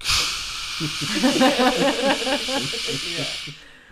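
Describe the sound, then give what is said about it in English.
A voice imitates a rushing waterfall with a loud, steady breathy hiss, a wavering voiced tone running underneath, for about three and a half seconds before stopping abruptly. “And then he's like, okay, you need to hold this here while Seth catches things at the other side of the waterfall.”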